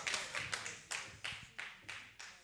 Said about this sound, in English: See, only 3 people clap because it affects the rest of us.